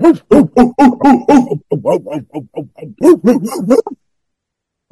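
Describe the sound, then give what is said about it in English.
A person imitates a howling junkyard dog, loud rapid runs of rising and falling yowls and yips for about four seconds before stopping abruptly. “Welcome to the Boombastic Cast, Junkyard Dog style.”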